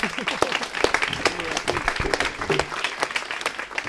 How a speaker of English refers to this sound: So let's clap for ….